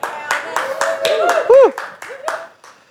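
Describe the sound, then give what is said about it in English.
An audience at Kingdom Faith Yorkshire claps in a steady, rhythmic beat, the sharp claps landing evenly about four times a second, with voices calling and singing over the top. “Well, some of us did by that sound of that clapping.”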